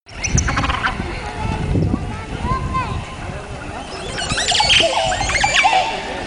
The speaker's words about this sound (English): That's the oscillated turkey, also called the green peacock. It mostly only lives in a small area of Mexico called the Yucatan Peninsula. It's a type of wild turkey, and at first glance, it looks and acts pretty much like an ordinary turkey.